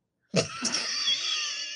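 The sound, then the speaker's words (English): A single drawn-out cat meow, fairly loud, starting abruptly and holding a steady, high, whiny tone to the end, with no talking around it. “And I think it's your turn. Meow.”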